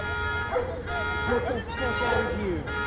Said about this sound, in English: Whoa. That is one hell of an explosion. Car alarms going off.